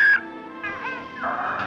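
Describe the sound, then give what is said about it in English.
A pet bird whistles: a sharp, bright note followed by a couple of warbling, wavering tones with no one talking over them, all within under two seconds. “He just whistled at you, Lois.”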